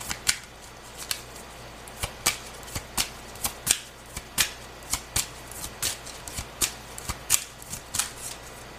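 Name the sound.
shuffling tarot cards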